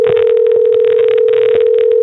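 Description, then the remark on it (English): A steady, loud telephone tone hums through a crackly, hissing phone line, with bursts of static breaking up the signal for the full two seconds. No one speaks. “There's some static in my wires for sure.”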